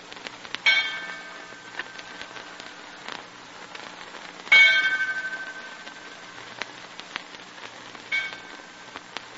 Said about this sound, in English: The freshening wind fills the sagging sails, and the Marie Celeste, fully rigged, her ship's bell clanging a sailor's dirge, without a living soul aboard, gets underway and leaves the crew struggling in the water.